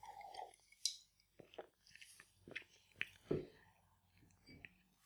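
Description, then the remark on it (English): Quiet sipping of a drink, with small wet mouth clicks and one deeper gulping swallow midway; no one speaks. “I hope you can't hear all those glug glug noises.”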